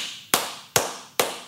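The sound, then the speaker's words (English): Three sharp hand claps at an even, slow pace, each a loud bright crack with a quick decay, and no voices alongside. “What the hell are you clapping for?”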